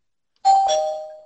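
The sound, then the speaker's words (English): A doorbell chimes a clear two-note ding-dong after a brief silence, the second tone ringing out and fading slowly. The chime is fairly loud, with no voices present. “Ding dong.”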